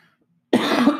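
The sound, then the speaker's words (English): A person sitting on a couch lets out a sudden loud cough after a moment of silence, rasping and sustained, with a second short hack at the end. “Sitting here coughing on the couch.”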